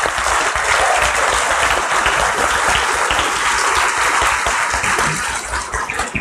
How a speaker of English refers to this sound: So moms, grandmas, soon to be moms, like, I just want to give you guys a round of applause. You guys are awesome.